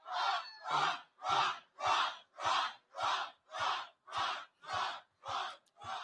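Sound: crowd cheering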